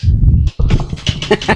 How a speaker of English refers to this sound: What is going on with your dogs up there, man? I don't know. They're barking at somebody. Sounds like they're being murdered.